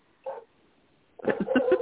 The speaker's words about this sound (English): Oh, there's my dog. Sorry.